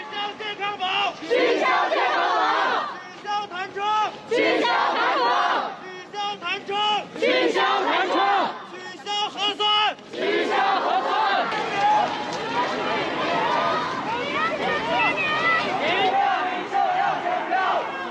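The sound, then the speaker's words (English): A large crowd of protesters in China shouts together in loud, rhythmic bursts, chanting slogans such as "No more tests" to demand the easing of restrictions, then blends into a sustained roar of overlapping yelling. “Chanting slogans such as "No more tests," protesters face an increased police presence at the scene.”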